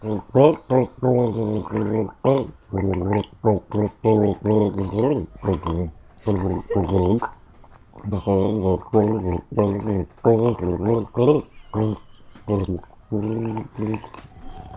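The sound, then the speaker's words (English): Someone gargles water to perform a song, in a steady rhythm, short bubbling bursts carrying a voiced, tuneful pitch that rises and falls, repeating loudly for about fifteen seconds with brief gaps between phrases. “Like he needed to gargle more water? It sounded like very rhythmic.”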